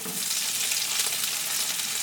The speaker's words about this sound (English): Okay, so the bell pepper goes into the pan with the onion, and we're gonna let those sweat down together.